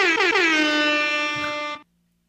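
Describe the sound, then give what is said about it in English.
A single loud, sustained air horn blast with a brassy, buzzing tone, holding steady for nearly two seconds before cutting off abruptly into silence. “Get that air horn. Oh, gotcha. Air horn.”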